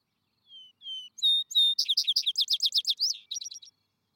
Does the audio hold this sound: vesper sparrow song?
yes